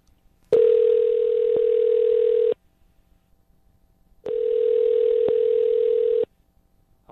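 Two long, steady electronic ring tones on a phone line during an outgoing call placed by the Star 101.3 radio morning show, each lasting about two seconds with a short silent pause between, heard clearly with no one talking.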